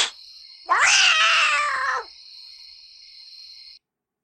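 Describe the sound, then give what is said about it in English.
A single loud, drawn-out yowl from Mr. McTuggins, the show cat, with a wavering pitch, lasting about a second, set against a steady high-pitched tone that continues on after the cry fades. “Mr. McTuggins' Tales is a segment where we try to entertain our show cat and our show mouse, Mr.”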